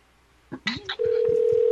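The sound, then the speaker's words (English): A phone line: a few quick clicks and beeps, then a steady, unbroken telephone tone that holds loud with no one picking up, and no voices. “won't answer the phone.”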